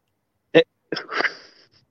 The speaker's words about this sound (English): like it sounds like he sneezes, but he's just like,